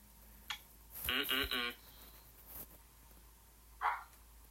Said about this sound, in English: Whoa, sorry. Hey, that's enough of that. Not everyone on the stream wants to hear you barking. My dog's going crazy over here, man.